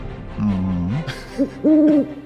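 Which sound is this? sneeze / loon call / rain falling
loon call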